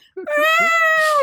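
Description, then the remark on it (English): A person's voice imitates a panicked, yowling cat dangling off the end of a boat, in one drawn-out, wavering wail that rises and falls, loud, lasting about a second. “Poor cat dangling off the end of a boat, flipping out.”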